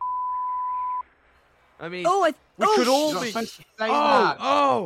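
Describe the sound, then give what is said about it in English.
A steady, flat censor beep lasts about a second on its own, then cuts off, followed by strained, drawn-out voices groaning and talking in bursts. “Okay, let's I'm just going to beep it. I'm beeping that out,”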